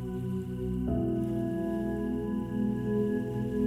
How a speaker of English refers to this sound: You can hear the sounds of small waterfalls around you. Water flowing gently.